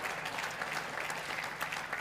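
An audience claps steadily for a woman as she comes up to the front, a dense, even patter of many hands that holds at a constant level throughout with no voices over it.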